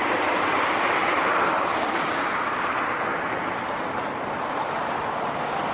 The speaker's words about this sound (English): Ooh, there's the train.